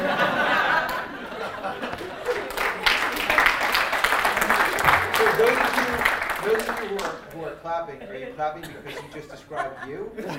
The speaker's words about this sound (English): Are you clapping because you just described you? They're always clapping and laughing when I speak because it's the truth.